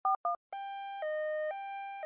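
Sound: telephone dial tone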